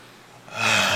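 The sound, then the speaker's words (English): A loud breath rushes in after a half-second of near silence, a single heavy, noisy exhale or gasp with no talking, during a moment of silence for an earthquake in Haiti. “You were breathing in no time.”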